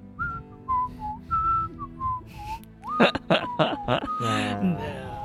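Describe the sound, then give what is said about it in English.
A person whistles a slow, sultry melody of long, gliding notes for a few seconds, clear, then breaks off into bursts of laughter. “Man, you need to find another sexy song, man.”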